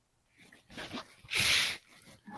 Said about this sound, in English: That is actually a carrier bag.